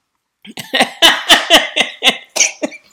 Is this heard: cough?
yes